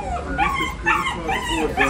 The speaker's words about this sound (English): I heard that poor dog before I even got in to the Solana Beach CVS. I ask you, does this dog sound like he's enjoying his time shopping with mommy?